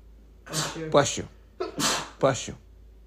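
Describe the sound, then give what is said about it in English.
Two sneezes in quick succession, each a sharp voiced burst with a hissing release, fairly loud against a quiet background. “Bless you.”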